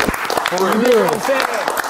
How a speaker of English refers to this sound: Hold up, but can we give a hand clap, you know what I'm saying, that this right here is a pure stage of confidence right here.